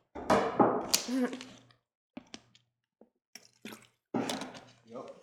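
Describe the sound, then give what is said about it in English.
Water bottles knock together in a toast: a hollow clunk followed by a few lighter taps and another knock, with faint voices. “Are we clinking, even though yeah, Kim clink, didn't clink. Get a clink.”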